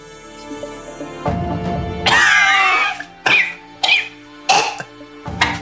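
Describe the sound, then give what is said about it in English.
A drawn-out, raspy, weak cough followed by four short, strained coughs spaced about half a second apart, coming from a pile of fallen chains, alone over a faint low hum, with no talking. “a weak coughing from the direction of this pile of now fallen chains.”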